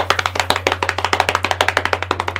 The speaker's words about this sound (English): give me a drum roll, and then we're going to announce our winner.